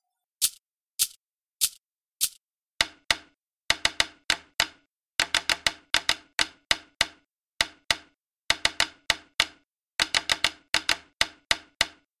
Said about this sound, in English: After the main groove is established, a unison stick groove enters over it. This is the stick part as played on the sides of the drums.